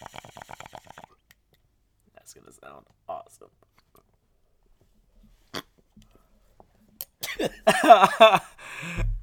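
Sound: cough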